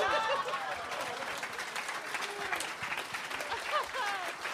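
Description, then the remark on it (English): A crowd at a live show of The Little Dum Dum Club claps steadily and densely for several seconds after a call to 'hear it for white people', with scattered whoops and excited cheering voices rising over the constant patter of hands. “Let's hear it for white people.”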